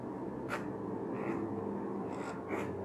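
A stiff zipper slider grinds and scrapes in short, uneven bursts, about four rasping tugs, as someone forces a seized, heavily corroded zipper on a wetsuit that is being repaired.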